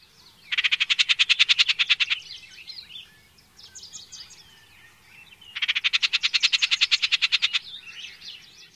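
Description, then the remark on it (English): Two loud, harsh chattering rattles from an icterid, a bird of the blackbird family, each a rapid burst of about two seconds, separated by softer scratchy calls and chirps. “The most common call is a harsh, chattering rattle.”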